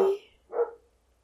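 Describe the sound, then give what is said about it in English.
Two short, sharp barks from a small dog named Tiny, with a brief pause between them and quiet afterward. “Your dog wants to talk to you.”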